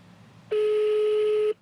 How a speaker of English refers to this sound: Damn, that's an old ring. That's a house ring.